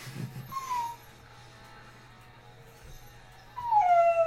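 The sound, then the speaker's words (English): A dog named Leon whines in two high, sliding cries separated by a quiet pause while its tail is being pawed at and nibbled; the first is short, while the second is louder and drawn out into a thin, howling whimper. “Getting pawed at and nibbled, and you're just whining to us.”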